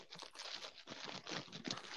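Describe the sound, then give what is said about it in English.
Dry crackling and crunching as a walnut shell is cracked and worked apart, a steady run of brittle snaps that sound much like paper being crumpled, with no voices. “What's with all the crumpling paper?”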